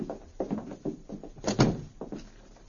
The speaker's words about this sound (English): After locking the door, the two men walked away down the hotel corridor.